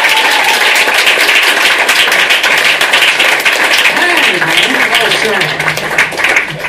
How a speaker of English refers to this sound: Big round of applause for Harland Williams, ladies and gentlemen.